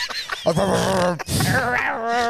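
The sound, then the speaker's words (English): A human voice mimics a chihuahua's yappy barking, two strained, high-pitched vocal bursts with a brief break between them, loud. “That's very chihuahua.”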